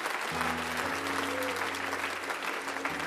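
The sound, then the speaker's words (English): A crowd applauds steadily for two speakers this morning, many hands clapping in a dense, sustained wash of sound, with a low sustained organ-like tone humming underneath throughout. “Let's give them a hand clap.”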